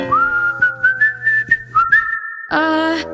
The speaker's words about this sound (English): Rexy the T-Rex and Little Starfish whistled as they looked away.